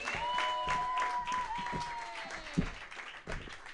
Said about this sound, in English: My God, guys, who's sober? only the comedians are clapping. Oh, it's so sad.